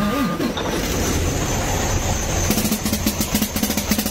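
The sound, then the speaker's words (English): A truck's steady, noisy engine rumble gives way to a fast run of sharp, rattling bursts that sound like snare drum hits, repeating in a loose rhythm over the engine drone. “Customer states, truck sounds like a snare drum.”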